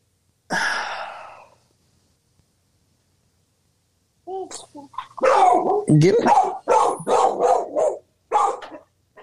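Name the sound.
dogs barking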